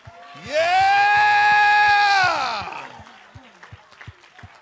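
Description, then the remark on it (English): Steady, rhythmic hand clapping runs throughout while a crowd giving the Lord a praise lets out one long, loud, sustained shout of "yeah" that rises, holds, and trails off, leaving the clapping to continue. “Now, with your hand clap, would you put a yeah with it?”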